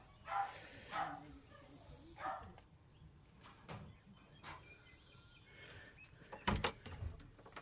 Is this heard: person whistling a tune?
no